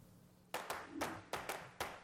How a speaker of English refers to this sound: Clapping.